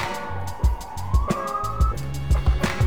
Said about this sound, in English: Uh-oh, sorry, siren time.